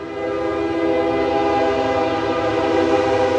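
A train passing through the quiet town of Iuka, Mississippi, sounds a long, steady horn blast with strong harmonic tones, loud and sustained over a low rumble of rail noise throughout, with no voices.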